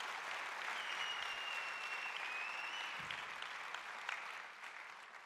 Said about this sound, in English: The band can come and join me. Thank you so much to my friends. Give them a big clap as they move from the stage.